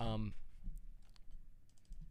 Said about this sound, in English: Excuse my typing real quick.